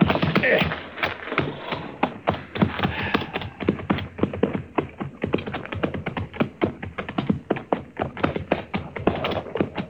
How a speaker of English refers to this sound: Looks like horses down there. Yes, sir. I can see their heads now. But I don't see nobody driving them.